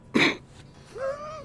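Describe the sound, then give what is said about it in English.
A single sharp cough bursts out from a person getting over a cold, followed by a brief voiced throat-clearing hum that trails off, with no talking. “Yeah, getting over a cold, little cough stuff.”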